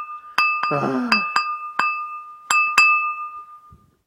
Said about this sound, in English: Someone tapping a glass repetitively. Yeah. That's what it is.